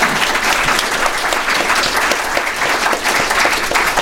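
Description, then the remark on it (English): Loud, sustained audience applause for guest Jerry Cohen, a dense steady patter of many hands clapping together with no pauses for the full four seconds. “And I want to hear one more round of applause for our tremendous guest, Jerry Cohen.”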